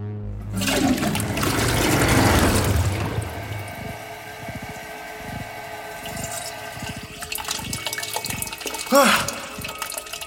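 A toilet flushes loudly in a bathroom, a rushing surge of water that fades into gurgling and a refilling tank hiss, with a few faint knocks and clicks near the end.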